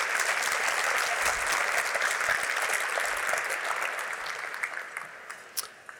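Sustained audience applause, a dense wash of many hands clapping that holds steady for several seconds, then thins out with scattered individual claps as it tapers off.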